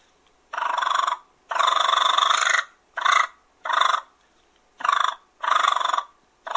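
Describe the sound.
A turkey fighting purr made with the tongue-roll method, a deep breath and air pushed across the rolling tongue: six loud, raspy, rolling bursts of uneven length, mid-pitched and buzzy, separated by short silences, with no talking.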